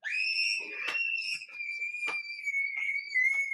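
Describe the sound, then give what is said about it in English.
A person imitates a Houston toad's mating call with one long, steady, high whistled tone that drifts slightly lower in pitch over several seconds, broken by a few short clicks and rasps. “A female will choose a male based on certain characteristics of his call.”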